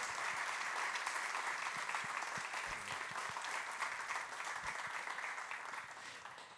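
A church audience applauds two global mission partners after a prayer. Dense overlapping hand claps form a bright, continuous wash of sound that holds at a fairly loud level for several seconds before easing slightly toward the end.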